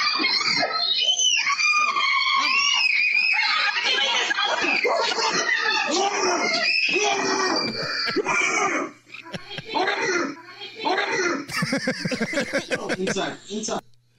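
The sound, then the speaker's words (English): A family screams and shrieks in panic, high-pitched and loud, as they run inside from a bear in their backyard. The overlapping cries are continuous at first, then break into shorter, choppier yells and gasps. “So that's the screams you hear when they run inside.”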